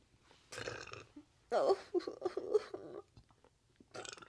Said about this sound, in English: Oh my God, I have to burp again.